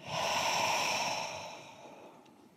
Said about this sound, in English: All right, let's try it one more time. And try and let your shoulders drop on this exhale.